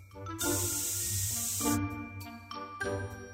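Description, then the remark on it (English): An aerosol can of hairspray hisses in a long, steady burst onto flipped hair ends, then gives a second, shorter spray, with a soft tinkling, humming tone running underneath. “Just when he got his ends flipped and sprayed”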